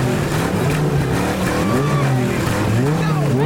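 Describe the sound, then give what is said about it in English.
Cars race past with loud, continuous engine roar and rising, revving pitch sweeps, a tire squeal cutting in near the end; the sound is dense throughout. It is the race opening a movie. “So I have the race to open the movie.”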